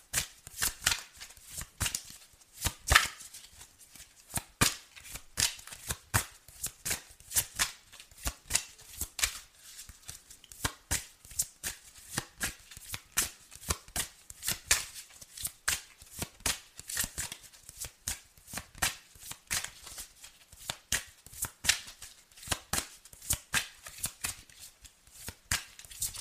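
Steady shuffling of a deck of tarot cards, with a rapid run of crisp riffling snaps and taps continuing for nearly half a minute, no voices.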